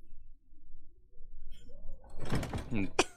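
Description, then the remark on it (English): A door is pushed shut after a quiet, rumbling start, with a burst of shuffling and rattling that ends in a sharp thud as it latches. “Close the door.”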